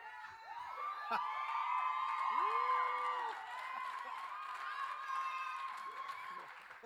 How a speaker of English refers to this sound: I think she's been paying some people to cheer for her. She's got some fans.